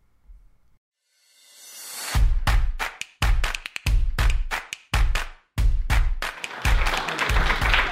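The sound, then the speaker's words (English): An audience at a Words with Wine author event put on by a library breaks into applause for the library, swelling from near silence into dense, loud, sustained clapping that carries on steadily to the end without any talking. “Can we have another round of applause for the library for putting this event on?”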